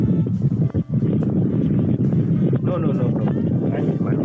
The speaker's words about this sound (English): Why is it so loud? Do you live on a cloud? No, it's windy.